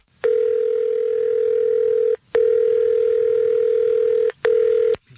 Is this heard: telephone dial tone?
yes